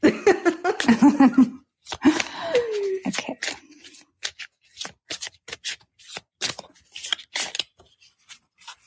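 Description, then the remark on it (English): A deck of cards being shuffled for a card reading, with quick riffling bursts and crisp taps, after a brief stretch of someone talking and laughing at the start. “I'm so soothed by the sound of the cards. My shoulders drop an inch every time you shuffle.”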